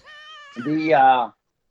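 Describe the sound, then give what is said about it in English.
A single drawn-out cat meow lasting about a second, starting as a thin, high whine and swelling into a louder, fuller wail before cutting off abruptly into silence. “You sure sound like I heard a kitty cat somewhere.”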